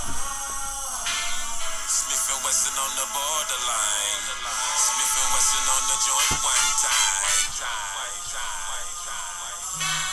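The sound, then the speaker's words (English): A recorded song plays steadily for the whole stretch, with a melodic vocal line gliding over a full band. The sound is fairly loud but slightly thin, like it's coming through a small speaker. “Do I get extra points by the name of the song? Yes, you can. ….”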